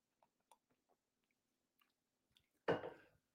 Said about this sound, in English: I need to take a quick sip of water here.